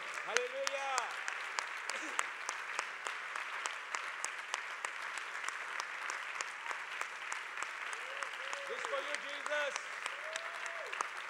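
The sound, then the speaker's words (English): Steady applause from an audience at a church worship service, a dense patter of many hands clapping continuously in praise of Jesus, with voices calling out and sustained tones rising over the clapping at times. “Let's acknowledge his presence, and just by giving me a round of applause, saying, Jesus, we just worship you, we just praise you.”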